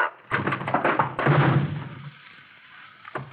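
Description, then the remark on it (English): A door is pulled open with a rattling clatter, then a grenade is tossed into the room, landing with a heavy thud that fades into a low rumble, followed by a faint knock. “Well, if you get the door, I'll toss the shell.”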